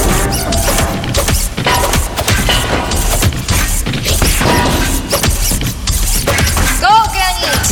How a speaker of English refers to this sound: Right, my turn. These are made of metal. I have no hang-ups about smashing them up. Evil robots, prepare to be scrapped by the Man of Stone.